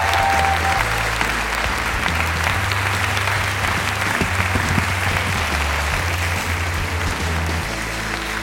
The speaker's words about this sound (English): Please join me in one more round of applause in welcoming Ronan Farrow and Kara Swisher to the Commonwealth Club.